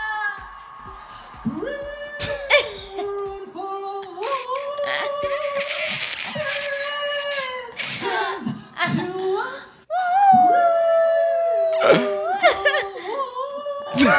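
High, sustained vocal wails in a song, sung by a woman on stage, slide up and down in long harmonic tones, resembling dogs howling, with breathy laugh-like bursts between phrases; loud throughout.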